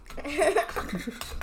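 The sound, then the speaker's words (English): Crunching and scraping as a spoon scoops through a bowl of Oreo cereal, with a faint clink of metal on the bowl and a soft giggle mixed in. “As she crunches and scoops even louder.”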